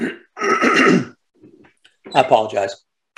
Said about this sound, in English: I apologize for that clearing my throat. I don't know what it is.